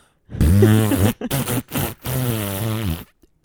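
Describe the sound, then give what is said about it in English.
A long, loud, buzzy fart on a first date, breaking into three sputtering bursts over about three seconds, with no talking around it. “And the more tragic you make the first fact, the better the fart is.”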